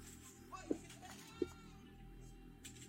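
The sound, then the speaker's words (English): A farmers' goat with a strange creature attached to it bleats twice in quick, short calls about a second apart, heard over a steady background hum with faint indistinct voices. “These farmers were shocked to find a strange creature attached to one of their goats.”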